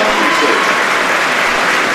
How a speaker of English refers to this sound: And he's getting a good round of applause from the home fans here